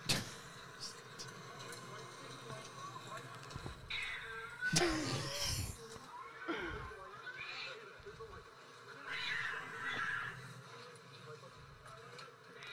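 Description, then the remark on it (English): A cat yowls and meows repeatedly in the background, drawn-out wavering cries coming and going over a noisy video soundtrack with voices talking. “But whoever did this video and put the cat thing in the background was...”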